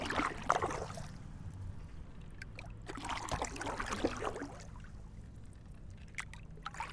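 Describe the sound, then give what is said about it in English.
Water swishes and splashes around a small rowboat as it glides along, with rhythmic surges of oar strokes and gentle trickling in between as the boat glides between strokes, steady. “That's what I'm doing now, just gliding through the water.”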